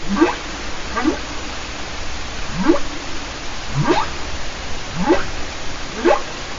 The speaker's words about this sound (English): Yep, here's a humpback whale. You can even tell that they're a different type of whale from the sounds they make.